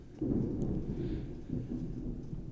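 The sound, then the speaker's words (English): A deep, sustained rumble of thunder rolls through a summer storm in Texas, low and heavy, with a steady wash of rain beneath it and no voices. “It's actually crazy outside.”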